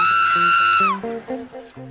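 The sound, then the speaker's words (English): A voice imitates a mourner's shrill, high-pitched scream, holding one piercing note for almost a second before it bends downward and breaks off, with lower sounds continuing beneath and after it. “You ever been at a funeral and heard that one little scream?”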